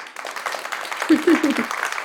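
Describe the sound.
A crowd applauds, a dense, steady patter of many hands clapping for about two seconds, with a few short voiced calls or cheers rising through it midway.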